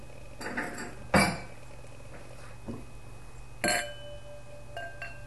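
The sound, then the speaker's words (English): A few sharp glass clinks, two louder ones with a brief ringing tone, plus lighter taps and handling noises, as a wine glass is set down and filled with a 2009 GSM red wine (Shiraz, Grenache). “Want a little snifter? Yeah, I'll give you a little glass.”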